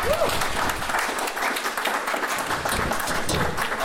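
A crowd breaks into sustained applause, dense clapping filling the whole few seconds at a steady, fairly loud level, with a faint murmur of voices mixed in.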